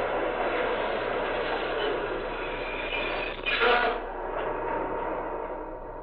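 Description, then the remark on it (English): A local passenger train of 7 cars pulls in with a steady, broad rumbling roar that holds throughout, swelling into a brief louder surge about midway before settling back to its constant wash of noise. “Here comes the local.”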